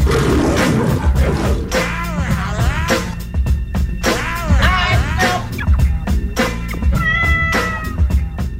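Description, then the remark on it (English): Loud, snarling lion roars rise and fall in repeated bursts, forceful, with a dense rumbling layer of growls and noise running continuously underneath; a lion roar sound effect on the KJ and Lyons show on WEEI. “Yes, my favorite episode of KJ and Lyons is when we go to the Lion's Den. Is it a mauling or are we petting it like a little kitten?”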